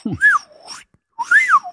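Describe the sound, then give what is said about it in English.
A slide whistle plays two swooping phrases, each gliding up and back down in pitch, separated by a short pause. The tones are loud and breathy, with no talking. “There were actually two slide whistles.”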